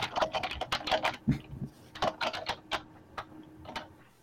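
Rapid, loud computer keyboard typing from someone slamming on the keys, with sharp, uneven clacks of individual keystrokes in quick bursts, with no one speaking.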